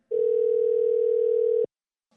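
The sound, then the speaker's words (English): A steady telephone dial tone of an outgoing call to a friend hums at one pitch for about a second and a half, then cuts off abruptly into silence, with a faint click at the very end. “let's give him a call.”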